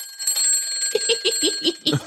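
An old-fashioned clock bell rings in a rapid, steady string of bright metallic strikes, with a high, shimmering tone that keeps ringing underneath. No one speaks.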